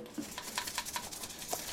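A toothbrush with regular dish soap scrubs a circuit board, which was run under hot water in the kitchen, in quick, steady back-and-forth strokes, a bristly scratching that repeats several times a second at moderate, even loudness, with no one talking.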